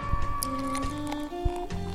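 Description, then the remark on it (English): Beer pouring into a glass, a steady gurgling stream whose ringing pitch steps upward as the glass fills, with a few soft knocks and splashes along the way. “I will say that it wasn't as disgusting sounding a pour as usual.”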